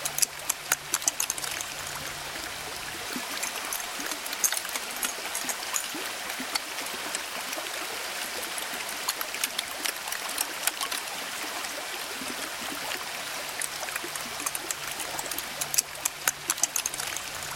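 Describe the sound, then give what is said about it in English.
Melting ice at Columbia Glacier in Alaska, recorded by Jonathan Storm, fizzes and crackles steadily, with countless tiny pops and sharper clicks scattered over a constant trickling, watery hiss. No voices are heard. “Jonathan Storm recorded the sounds of ice melting at Alaska's Columbia Glacier.”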